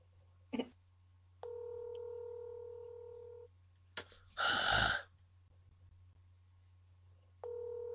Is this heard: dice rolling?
no